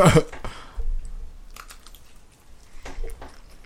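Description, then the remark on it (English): Chewing of crunchy pepperoni pizza, with a loud bite at the start followed by several crisp, irregular crunches and soft mouth sounds, no talking. “Pepperoni's got a good crunch.”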